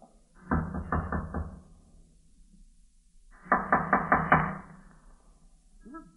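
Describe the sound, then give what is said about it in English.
Two bursts of firm knocking on a wooden door in an old tenement, each a quick series of about four or five raps, separated by a pause of a couple of seconds; fairly loud, with no talking. “Let's try the door.”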